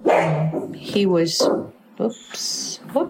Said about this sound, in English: The dog's barking, so. That's okay. We love dogs. We love dogs.